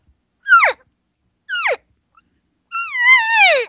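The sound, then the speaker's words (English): A person imitates an elk cow call to invite a bull elk over: two short, descending mews followed by a longer, wavering whine that trails off, clear with nothing else underneath. “You start talking elk when you're out there.”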